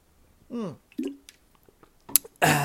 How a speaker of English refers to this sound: Maybe I should just have a sip of water here.